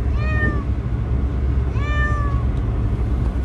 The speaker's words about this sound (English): She's in this really small, she's a gigantic cat, by the way, but they said that she weighed 12 pounds, but I don't know about that. It might be a little bit more than that, but she's in this little tiny cat carrier, so of course she hates it.